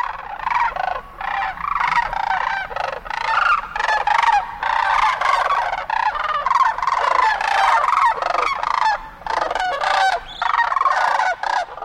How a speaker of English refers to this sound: Before we go, a quick stop along the banks of the Platte River near Holdrege, Nebraska, where a flock of sandhill cranes has stopped to feed. Lang Elliott and Ted Mack were there to capture the event.